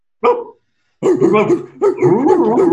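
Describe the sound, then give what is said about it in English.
Dogs bark and whimper: one short sharp bark, a brief pause, then a steady run of loud, high-pitched whining and yelping vocalizations that carries to the end. “And these dogs are my dogs.”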